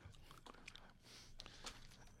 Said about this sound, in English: And gum? Got plenty, thanks. Gum? no problem. I'm chewing a whole wad, thanks. Oh, spit it out.